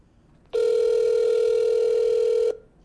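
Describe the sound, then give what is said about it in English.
A single steady electronic telephone ring tone sounds for about two seconds at one unwavering pitch, then cuts off cleanly, as a call is placed to the Secretary of State's Office. No voices are heard. “So I call up the guy in charge of elections at the Secretary of State's office”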